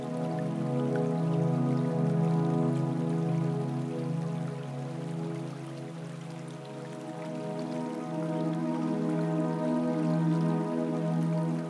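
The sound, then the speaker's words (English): Gentle rain patters steadily and softly, with light scattered drops over a low, sustained droning tone that continues throughout. No one speaks. “A gentle rain begins to fall.”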